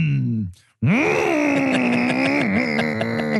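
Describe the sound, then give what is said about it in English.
A voice imitates a revving chainsaw engine: a short droning growl that falls in pitch, a brief pause, then a loud buzzing rev that climbs and holds steady with a slight wobble near the end. “That's an actual chainsaw on a desk.”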